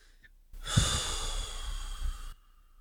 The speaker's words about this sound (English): take long, deep breaths. And relax.